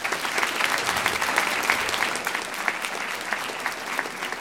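Sustained audience applause, a dense steady patter of many hands clapping at an even level throughout, with no voices standing out above it.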